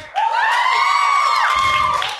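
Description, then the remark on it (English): An audience cheers loudly for about two seconds in response to a call to cheer if they think Snape is evil, a high sustained whooping voice rising above the crowd's steady roar before it tapers off. “If you think Snape is evil, cheer now.”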